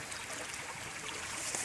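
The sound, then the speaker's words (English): Fresh water trickles steadily into a filter bottle, a soft, continuous pouring hiss with no voices, holding an even level throughout. “Because I've just got to get some fresh water in my grail.”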